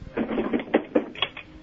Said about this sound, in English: All right, have you opened up the, let me hear you open up the drawer. Oh, it's already, it's open now. I'll close and reopen close so it, just so we can just hear it.